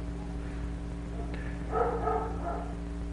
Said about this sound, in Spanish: Como pongámosle el ladrido a este perro ahora. Supónganse que me moleste. Y que yo dentro cree toda una neurosis alrededor del ladrido del perro.